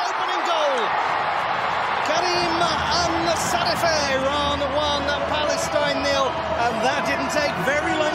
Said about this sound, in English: Only 2 minutes into the game, Iran scores a goal and the crowd goes wild.